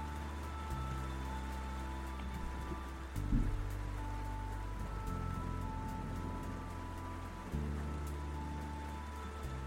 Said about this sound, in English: So I sat back against the wall next to the couch and listened to the rain. My eyes felt heavy, and before I knew it, the rhythmic sounds of the night had lulled me to sleep.